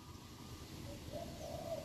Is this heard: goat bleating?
no